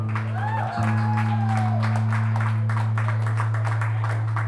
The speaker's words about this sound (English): Everyone, want to give a round of applause for all the folks that have already been up here.